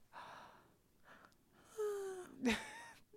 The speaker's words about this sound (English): Why are you yawning whilst you're speaking? Because I'm sleeping.